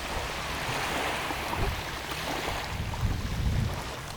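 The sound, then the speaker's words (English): Steady ocean surf washing toward the shore, a continuous broad roar of waves with low rumbling swells building and breaking, with some wind noise and no voices. “I'm going to invite you to listen. I'm coming closer to the shore, and I want you to bring that place to mind.”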